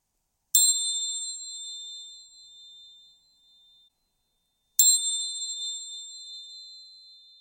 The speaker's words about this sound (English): And we'll start and finish the practice now with the sound of the chimes.